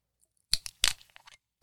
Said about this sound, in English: Cork pop.